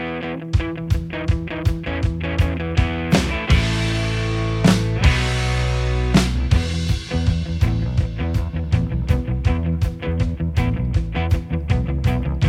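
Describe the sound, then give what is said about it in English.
An alternative rock song intro by a band from Cambridge, England: a full band plays at a steady, driving beat with punchy drum hits, a few crashing cymbal swells and sustained guitar and bass, loud, with no vocals. “we love discovering new music too, and believe that a lot of it will appeal to classic alternative music fans.”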